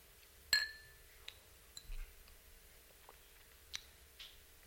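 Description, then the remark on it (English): Glasses of wine clink together once in a toast during a blessing over the wine, a bright ringing chime that fades quickly, followed by a few faint scattered ticks and small knocks. “And now we cheers.”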